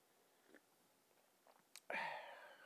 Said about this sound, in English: Excuse me as I take a sip of coffee while we get these notes and things together.